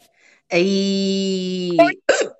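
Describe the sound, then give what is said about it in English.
A voice holds a long, steady sung note while recording an intro, then breaks off abruptly with a sharp hiccup, followed moments later by another short, jerky hiccup burst, fairly loud. “Oh, God damn it. Hiccups. Ruining my intro.”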